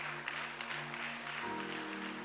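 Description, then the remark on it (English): An audience claps steadily for people coming forward to pray, a dense wash of many hands with scattered sharper claps, while sustained musical tones hum underneath and shift pitch partway through. “Keep clapping your hands for them.”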